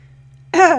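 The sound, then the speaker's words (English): After a moment of near silence, one short, strained cough bursts out from a person who has just inhaled water, raspy and voiced, its pitch sliding downward as it fades. “Excuse me, I just inhaled my water.”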